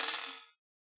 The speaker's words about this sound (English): Roll that dice.